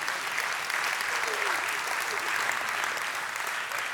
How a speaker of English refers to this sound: Give the Lord another round of applause.